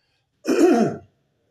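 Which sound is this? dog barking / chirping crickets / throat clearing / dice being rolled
throat clearing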